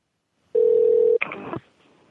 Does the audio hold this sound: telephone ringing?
yes